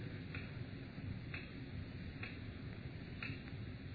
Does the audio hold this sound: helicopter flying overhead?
no